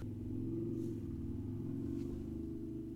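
A motorcycle rumbles by, its deep, steady engine drone filling the whole stretch, with the pitch wavering slightly as it passes. No one is speaking.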